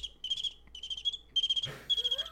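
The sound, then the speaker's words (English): A voice imitates crickets with a steady run of high, rapid chirping pulses in short bursts, clear, broken once by a brief rustly burst of noise. “That's my bad cricket sound effects.”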